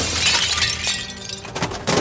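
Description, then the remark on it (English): Glass shatters and objects crash in a loud, continuous burst of breaking as Roman soldiers ransack Valentine's home, smashing everything in sight, with bright tinkling shards and heavier impacts piling on top of one another, no voices present. “Roman soldiers ransacked Valentine's home, smashing and destroying everything in sight.”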